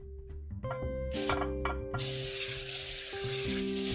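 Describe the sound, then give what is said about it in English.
Bursts of hissing spray from a can of non-stick high-yield canola cooking oil with a broken tip give way to steady, crackling grease sizzling, with a low humming tone running underneath throughout. “So now we're gonna spray that.”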